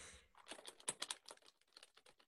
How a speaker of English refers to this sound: It's a piece of paper that I'm just jiggling. Okay, well, it's making noise on the mic, so could you please stop?